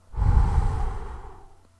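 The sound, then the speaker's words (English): A single long, breathy blow of air, fairly strong, rising quickly and then fading away over about a second and a half, with no voices, representing God breathing life into the nose of the first man. “He bent over the man and breathed life into his nose.”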